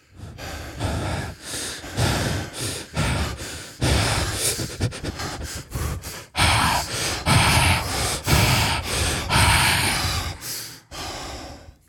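Loud heavy breathing fills the whole stretch, a rapid run of harsh huffing breaths broken by sharp gasps and nasal snorts, with no words spoken.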